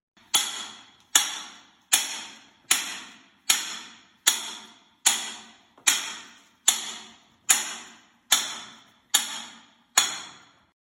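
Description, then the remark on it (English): A man demonstrates an early miner's hand hammering on metal underground, by candlelight with the electric lights off: about thirteen steady, evenly spaced blows, each a sharp clang with a bright ringing tail that fades before the next strike. No voices. “For this demonstration, he turned off all electric lights, lit two candles mounted on the wall, and hammered for a moment in the candlelight darkness to give a really vivid impression of the look and feel of an early miner's life underground.”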